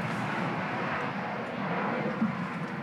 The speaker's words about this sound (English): What is that? It's a plane. That's a low-flying plane right there.